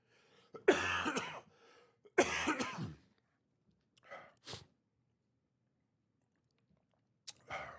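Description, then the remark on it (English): Two loud, harsh coughs, followed by a few quieter throat-clearing rasps and a final short cough, spaced out with silence between them and no talking. “So the second way we jump in, because I'm slowing down now and I'm coughing and sweating, is to show daily appreciation to each other.”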